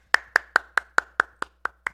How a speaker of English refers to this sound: Thank you for taking time out of your busy schedule, weekend, day, to actually come on here to podcast with us. So once again, a round of applause.